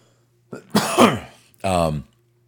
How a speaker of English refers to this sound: Not blow your ears out. Me coughing might do that. Oh my God, excuse me.